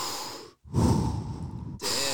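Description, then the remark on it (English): A voice imitates heavy, labored breathing from pain during a painful massage: three loud, ragged breaths in quick succession, with a brief pause after the first, strained and breathy. “I'm like, I was breathing heavy.”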